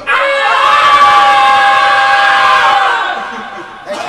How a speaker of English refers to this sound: And the whole band is going to scream for you right now. Ready?